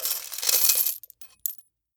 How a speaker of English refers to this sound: Vini screamed and dropped the coin bag. The coin spilled out and rolled under the pop machine.